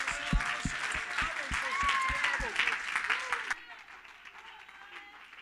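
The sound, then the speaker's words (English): A church audience claps in praise of God in a steady rhythm, about one clap every third of a second, with a bright murmur of many voices. After about three and a half seconds it abruptly drops to quieter background sound. “Oh, clap your hands and give God praise.”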